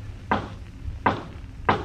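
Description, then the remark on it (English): Three slow, evenly spaced knocks on a wooden door, each a solid thud with no voices around them. “All you have to do is lift your arm and knock on the door.”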